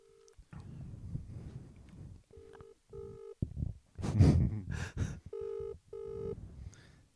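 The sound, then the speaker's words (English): A phone call rings in a steady series of short electronic trills that go unanswered, interrupted midway by a loud, breathy rustling burst. “You can message me, you won't pick up your fucking phone, your dog.”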